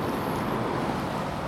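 A steady, low engine rumble from a boat with large display screens on both sides, struggling to manoeuvre to the quay at Slussen, blended with constant wind buffeting and broad outdoor noise, holding an even level throughout with no voices.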